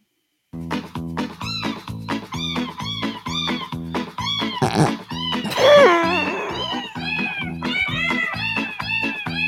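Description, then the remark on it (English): Cat meows pitched into a Christmas melody, one tuned meow per note in a steady, song-like rhythm, loud, with a brief burst of squealing mews midway and no talking. “And this is Cat Bites on Sound Bites for the Holidays.”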